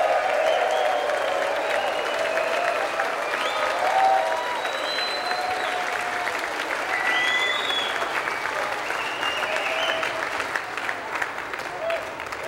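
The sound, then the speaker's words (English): Men and children in an audience clap steadily for about twelve seconds to praise the seated mothers present, the dense applause mixed with scattered shouts and high cheering voices rising above it, staying loud throughout. “And guys and children, get up and show your praise through shouting and boasting and raving to the moms that are here right now.”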